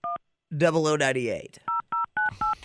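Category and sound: signal or alarm, telephone keypad dialing tones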